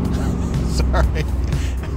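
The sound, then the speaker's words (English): A car engine roars loudly and steadily at speed, reaching 90, a deep continuous rumble with brief higher bursts that may be a voice or passing noise over it. “I love cars, even the bad ones. Listen to that. Okay, that's 90.”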